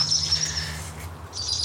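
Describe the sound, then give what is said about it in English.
A powerful owl chick gives a thin, high-pitched wheezing call, drawn out and then repeated more briefly, over a steady low rumble of background noise. “Is that the chick calling? I think it might have been.”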